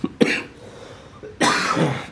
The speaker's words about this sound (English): I just can't quit coughing. You're going to get that bone out of there eventually. I hope so.